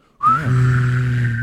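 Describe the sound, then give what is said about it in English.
An unsuccessful attempt at whistling by a person who does not know how to whistle: a thin, brief whistle tone quickly gives way to a breathy, buzzing hum held for about a second before cutting off. “fun side note: I don't know how to whistle.”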